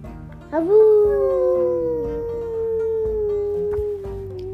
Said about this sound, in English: With that, I let out the biggest yell I had ever yelled in my life.